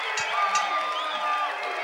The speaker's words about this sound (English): Listen to this crowd here at the Irish McNeil Boys Club.